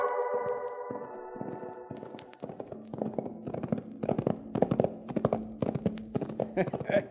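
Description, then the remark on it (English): A horse's hooves clip-clop at a steady walking pace, fairly loud, the horse carrying a rider tied to the saddle, the rhythmic clopping starting after a sustained tonal sound fades at the beginning. “You can't fall off the way Chad's got you tied to the saddle.”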